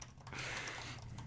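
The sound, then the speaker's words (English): Faint, rapid clicking of someone typing on a computer keyboard, a steady patter of soft keystrokes over a low background hum, with no one speaking. “Typing. Clickety-clack.”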